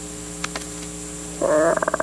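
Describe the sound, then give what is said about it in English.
A voice mimics a small animal roar, one short, throaty burst that breaks into a pulsing, rattling finish. A few faint taps come first, and a steady low hum runs underneath. “Little roar.”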